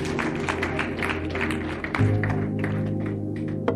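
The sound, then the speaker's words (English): An audience claps their hands for God in a dense, steady patter of many overlapping claps, carried over a sustained low tonal hum, with a sharp louder clap near the end. “Clap your hands for God.”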